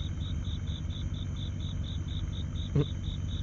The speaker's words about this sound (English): Hear the crickets? Yeah, I thought this would actually be a really, really good background type of sound clip into today's show. I opened up my windows here to the studio, and I thought the crickets in the background would give a very good approach